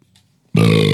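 A single loud, drawn-out burp erupts after a brief near-quiet moment, with a deep rumbling tone sustained for about half a second.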